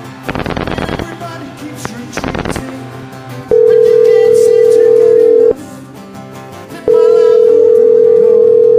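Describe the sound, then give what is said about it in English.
Two short bursts of rapid rotary dial clicking from a 1970s rotary telephone, followed by a loud, steady mid-pitched phone tone that plays for about two seconds, pauses briefly, then returns. No one speaks. “Typically, the rotary dialing sounds like this.”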